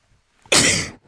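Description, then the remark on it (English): A single loud sneeze bursts out after a brief quiet moment, sharp and breathy, then trails off quickly into silence. “Bless you. Times two.”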